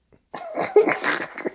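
A wet sniffle and snort, a noisy burst of nasal airflow that rattles on for over a second, with no talking.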